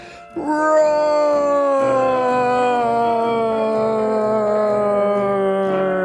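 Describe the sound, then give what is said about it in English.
A human voice imitates a lion's roar: one loud, sustained, howl-like cry that starts abruptly and holds a steady pitch for several seconds. “And then this time, on the count of three, I want to hear your most powerful lion's roar.”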